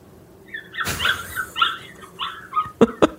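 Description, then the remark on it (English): A dog whimpers in high, wavering whines, then lets out a few sharp, short barks near the end, clear with no talking over it. “Is that my dog?”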